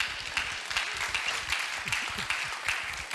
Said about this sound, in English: Thank you. Thank you for the courtesy clap. That was very kind.